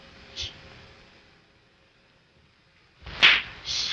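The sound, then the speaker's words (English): Two sharp slaps across the face, a lighter one first and then a louder, harder smack a few seconds later, with a brief ringing tail and quiet in between. “How dare you slap me?”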